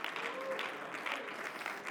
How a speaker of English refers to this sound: Somebody clap your hands and just shout a little bit now to the Lord.